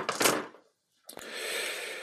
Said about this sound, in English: That's a lot of dice. There we go. Let me know if I'm hitting the mic when I shake my dice like this.